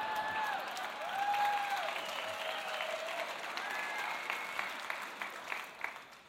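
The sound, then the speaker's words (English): Steady audience applause at an Easter church service at Christ the King, a dense wash of many hands clapping for several seconds, with a few brief whoops and tonal cheers rising above it and no one speaking. “If I knew people would clap, I would have lifted my game a long time ago.”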